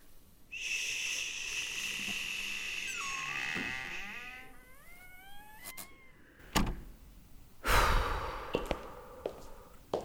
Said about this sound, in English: Okay, I'm gonna open the fire exit door.